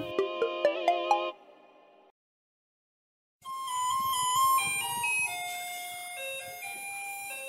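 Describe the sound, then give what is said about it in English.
A theme tune remixing the Taiwan garbage-truck song: a short burst of bright, plinking chime notes, a pause of silence, then a sustained electronic jingle tune playing loudly and steadily, with no voices. “Hey, did you like our new theme tune? For those in Taiwan, you'd recognize that as a remix of the Garbage Truck song.”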